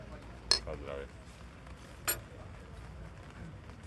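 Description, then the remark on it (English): Coffee cups clink together in a toast, two bright, brief ceramic taps about a second and a half apart, over a quiet low room murmur. “Let's have a cheers on that in coffee.”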